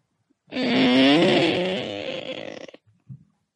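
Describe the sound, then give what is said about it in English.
A voice imitates a door creaking open after a card is put against the door: a drawn-out, wavering, groaning creak lasting about two seconds, rising and falling in pitch, followed by a couple of short soft thumps. “You hear a creaking noise open in front of you.”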